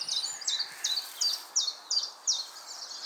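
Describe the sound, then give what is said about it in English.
A chiffchaff sings a steady string of high, evenly spaced chirping notes, about two per second, clear against faint background hiss with no voices. “I think that's the chiff chaff I hear.”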